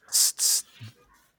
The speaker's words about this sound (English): Anyway, I'm going to take off my headphones. Just hit it with the spray. Hit it with the spray.